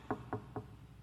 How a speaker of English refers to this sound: And he knocked on the door.